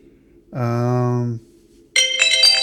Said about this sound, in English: 2 hours and 15 minutes. Why did I have that timer? 0 hours, 4 minutes, and let's choose what is a good ringtone for this.